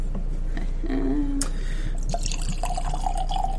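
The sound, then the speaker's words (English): Bourbon pours into a glass, a steady gurgling trickle whose pitch climbs as the glass fills, with a few small drips and clinks along the way. “I'll stop there because I have now, the tendency to over pour.”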